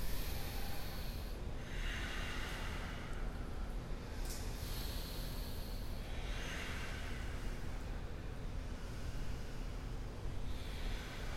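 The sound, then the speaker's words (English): Slow, deep yoga breathing during a yoga flow, with long airy inhales and exhales, about four hissy breaths spaced a few seconds apart over a steady low background hum, with no talking. “Take one more breath.”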